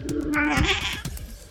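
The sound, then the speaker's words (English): A single drawn-out cat meow, fairly loud, with a slightly bleating, wavering tone, set against faint background clicks and noise. “and as always, let's call that cat a bastard.”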